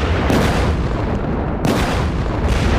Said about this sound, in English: the ground in front of all of you will light up with explosions.